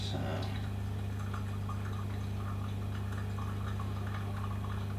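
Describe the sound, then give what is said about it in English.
Water is poured in a steady, continuous stream for brewing coffee, a soft hissing trickle that lasts several seconds over a constant low hum. “So let me just add a little bit more water here.”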